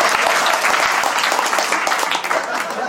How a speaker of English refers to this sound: Give this lady a round of applause. That's amazing.